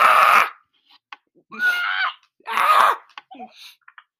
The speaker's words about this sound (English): I know, but I'm trying to, like, shout, like, scream. Like, you know, tell them to come. Scream into the void. Scream in the void.